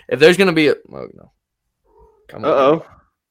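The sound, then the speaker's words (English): A female domestic cat meows: a long, wavering call, a brief softer one right after, then another drawn-out meow following a short pause. “The cat makes an appearance on the show.”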